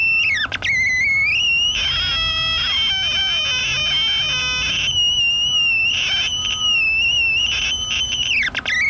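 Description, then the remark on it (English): A reed warbler sings a busy, chattering song of rapid clicks and buzzy notes, bunched in the middle and repeating in short bursts, over a steady high-pitched tone that runs throughout. No one speaks. “Particular species of bird. The reed warbler.”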